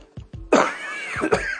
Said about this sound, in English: In fact, I'm coughing on here.